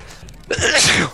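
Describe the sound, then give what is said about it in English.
A single sneeze bursts out after a brief quiet moment, loud, with a sharp breathy blast that trails off quickly. “Bless you.”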